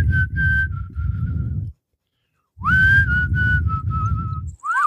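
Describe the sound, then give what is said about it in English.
A person whistles a wandering, tuneless line of sustained notes, pausing briefly in the middle, over a steady low rumble like an engine or road noise. “Sometimes when you're riding on these long journeys, it's nice to just whistle tunelessly for hours and hours and hours.”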